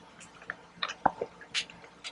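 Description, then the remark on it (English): Someone drinks water with a few soft, wet sips, swallows and mouth clicks spread over a couple of seconds. The sounds are quiet and there is no talking. “I'm going to get me some water, you guys, because my voice is going out.”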